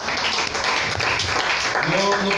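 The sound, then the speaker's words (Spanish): A church audience applauds for the Lord during a pastor's sermon, a steady, dense wash of clapping that fills the whole clip, with voices calling out over it toward the end. “Un aplauso, Señor.”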